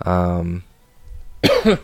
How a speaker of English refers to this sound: So I'm still getting over that. So sorry about some of the coughs and stuff like that. You know, just trying to get rid of it.